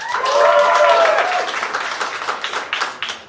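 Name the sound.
audience applauding and cheering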